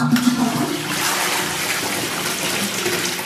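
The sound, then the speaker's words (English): A toilet in a new, shiny public restroom cubicle flushes with a loud, steady rush of water filling the space, continuous, with no voices over it. “Should we check out the flush? Yeah, all right. Okay, here we go.”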